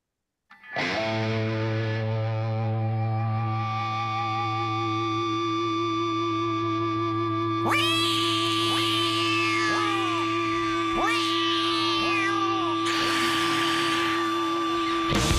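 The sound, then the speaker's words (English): A steady, buzzing drone starts a 1997 song, then about halfway through a person's swooping, meow-like cries come in, imitating a cat roughly five times over the continuing hum. “It's really apparent when you're wearing headphones and you hear that ring, and it's obviously somebody imitating a cat.”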